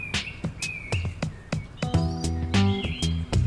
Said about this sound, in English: So beautiful. Can even hear so many just sitting here. Oh, some parakeets. Some parakeets.